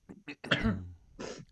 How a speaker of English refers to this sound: It's not always easy trying to have a conversation and then trying to look cool, sipping and then choking and swallowing the wrong way. After I'd talked about how I hadn't coughed through the whole event.